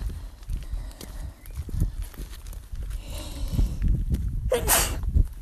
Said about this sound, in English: Still sneezing at the pollen, it seems.